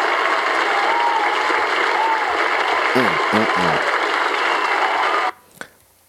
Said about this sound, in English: A round of applause, please.